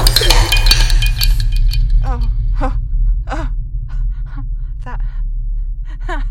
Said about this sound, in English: That was me. I did that. I told it and it shattered. It just shattered. In a million tiny pieces.